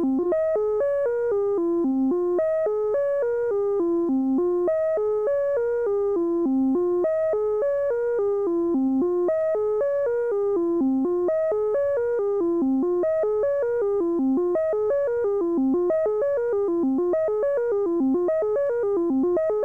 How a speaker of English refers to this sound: Or with an external oscillator, say a sine wave.